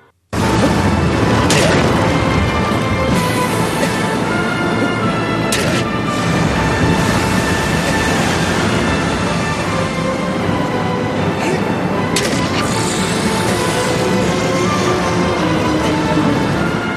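Loud, sweeping dramatic music from the video game Shadow of the Colossus runs throughout, broken by several sharp stabbing impacts and hissing spray bursts, with a monster's roar rising over the score near the end.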